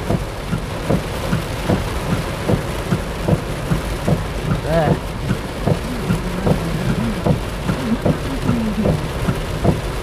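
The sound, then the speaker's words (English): Heavy rain heard from inside a car pours in a loud, steady roar, dense, with low irregular thumps beneath it and a faint voice surfacing briefly midway. “Jesus, you'd think there was a hurricane. Or I think this might be a tropical storm or something.”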